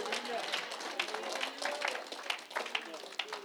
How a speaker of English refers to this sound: If you believe that one more time, clap your hands and give the Lord an amen tonight.